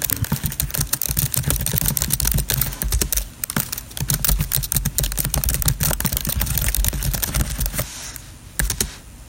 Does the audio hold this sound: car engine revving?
no